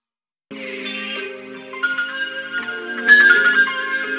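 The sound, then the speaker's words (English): A Christian rap song plays through a small phone speaker after half a second of silence: thin, tinny sustained melodic tones and layered chords, steady and moderately loud, with no talking over it. “So once again, I don't have the proper aux set up, but we're gonna play it through the phone.”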